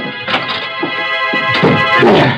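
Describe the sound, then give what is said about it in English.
The door of a room in a rooming house closes with a dull, solid thunk, heard over a steady, sustained musical drone with a few softer knocks and rustles around it. “He had to get to his room, get in and close the door of the world. Close the door.”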